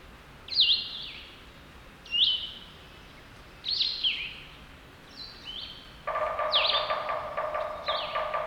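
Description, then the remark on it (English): A sapsucker calls repeatedly, giving five or six high, slurred mewing notes spaced a second or so apart, with a lower buzzy, harmonic sound joining in toward the end. “And there's another one of those silly sapsuckers.”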